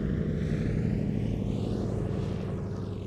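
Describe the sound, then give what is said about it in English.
A DC-3 propeller airliner drones steadily overhead as it comes in to land, its deep engine rumble loud and constant with a slight shifting whine as it passes on approach, with no voices. “she twirled the baton so fast she looked like a DC-3 coming in for a landing”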